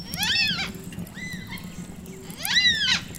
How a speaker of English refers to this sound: What was that sound? Sounds like a dinosaur. Cockatoos. Muna, yes. There are Minkuna Marpali, lots of black cockatoos, and Ngara, white cockatoos here in Palawa country.